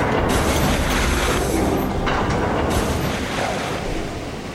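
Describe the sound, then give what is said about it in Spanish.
A loud, continuous roar of water rushing and draining through several opened sluice gates to lower the water in a nearly flooded valve room, heavy and rumbling, easing slightly toward the end, with no voices. “Cuando llegamos a Hefesto para atender la emergencia, la sala de válvulas estaba prácticamente inundada. Conseguimos reducir el nivel del agua abriendo varias esclusas.”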